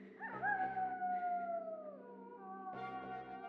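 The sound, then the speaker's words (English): A wolf howls in a long, wavering cry that slowly falls in pitch, then a second howl rises near the end. It is steady, with no talking. “I know a bike can outrun a wolf, but...”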